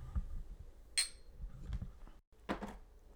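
Drinking glasses clink together once in a toast before drinking shots, a bright ringing tap that fades quickly, followed by soft bumps and handling noises, with no talking.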